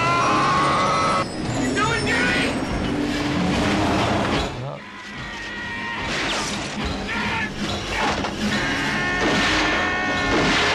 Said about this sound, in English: And we smashed the van through a set in Valencia, which was pretty cool. Now, part of the reason this was done is the fact that I wanted the scene to be lit by the lights of the van, as I recall.